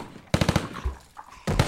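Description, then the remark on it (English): Loud bursts of rapid gunfire in a hallway: a quick string of about five sharp shots, a brief lull with low rumbling, then another burst starting up at the end. “Cease fire! He's down!”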